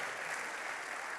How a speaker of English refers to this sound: Okay. Yeah, give them a big clap. That's amazing.